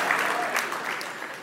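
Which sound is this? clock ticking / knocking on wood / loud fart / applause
applause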